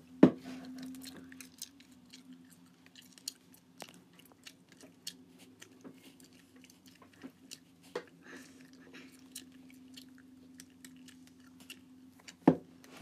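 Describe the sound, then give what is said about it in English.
Wet, sticky gum chewing done as ASMR eating, with irregular soft smacks and clicks, a few sharper pops standing out, over a steady low hum. No one speaks. “Going to start off with some gum chewing.”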